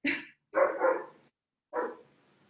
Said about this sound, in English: Oh, sorry, my dog is also barking.